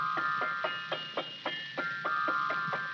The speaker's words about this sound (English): Now a piano.